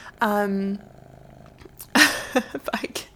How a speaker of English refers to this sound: He's just sitting on my lap. And he's just... Oh my God, guys. You might hear this the whole time. I can't make him stop because he's so perfect. Okay, I'm just going to keep talking. And you can enjoy the soothing sounds of my cat purring.